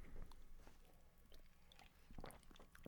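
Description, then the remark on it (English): Quiet sipping of a juice drink containing carrot and tart cherry, with soft slurps, swallows and small wet mouth clicks scattered over a few seconds and no talking. “All right, let's have a sip.”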